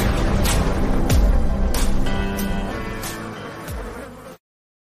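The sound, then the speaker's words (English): A loud, continuous insect buzz sound effect plays as an opening intro for several seconds, droning with a few sharp swells and sweeps before cutting off abruptly. “Opening buzz brought to you by Busch Light.”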